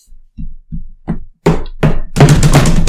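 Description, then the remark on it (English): A voice imitates the huge strides of someone sprinting silently at full speed up stairs: a series of low, thudding beats that grow louder and harsher, quickening until they blur into a sustained rushing noise at the end. “Not the fast tapping, just, like, those huge strides you take when you're running real fast.”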